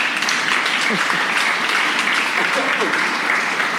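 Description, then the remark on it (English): An audience applauds steadily for a few seconds, a dense wash of many hands clapping at an even, fairly loud level, with a few faint voices mixed underneath. “You should applaud for that.”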